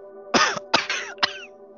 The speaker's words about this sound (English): James is sitting next to Mary's bed in what is probably their home. Mary. Mary coughs a couple of times.